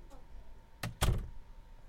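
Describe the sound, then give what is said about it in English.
A door swings shut with a solid thunk, preceded by a brief latch click. “Go play. Close the door.”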